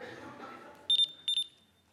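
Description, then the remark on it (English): A dog training collar beeps, four short, sharp high-pitched tones in two quick pairs, loud, following a moment of quiet talk. “Here it was, a collar which beeps.”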